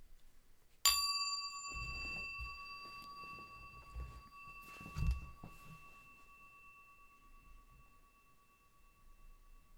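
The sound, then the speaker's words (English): A single meditation bell is struck once near the start, ringing out with a clear tone that sustains and slowly fades for several seconds, with faint low rustling beneath. “I'm not going to forsake my bell. I'm going to ring the bell.”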